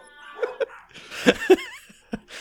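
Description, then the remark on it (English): Dogs bark, set off by a loud beer, in a handful of short, sharp yelps spaced irregularly, the loudest pair near the middle, followed by a brief rising whine and one last bark; no one speaks. “It made my dogs bark somehow.”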